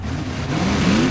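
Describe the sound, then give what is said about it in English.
The engine of a monster truck, one of two named Truckinator and Flamethrower, revs loudly after final engine diagnostics, its deep rumble climbing in pitch over a single short burst with no voices. “Our two monster trucks have finished getting their tire pressures checked, and I'm being told that final engine diagnostics have been completed.”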